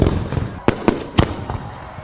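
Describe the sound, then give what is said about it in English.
Fireworks exploding in a quick, irregular string of sharp bangs, about four loud bursts over a steady crackling rumble, with no one talking. “So that's why some places are moving away from fireworks altogether and now creating displays made by drones.”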